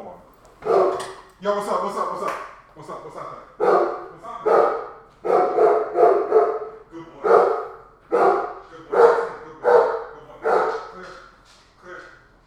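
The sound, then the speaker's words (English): A dog barks over and over in a steady, insistent rhythm, about a dozen loud barks in quick succession with only short pauses between them. “That's a good fucking dog, man.”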